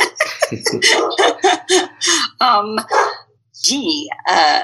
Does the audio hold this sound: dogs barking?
yes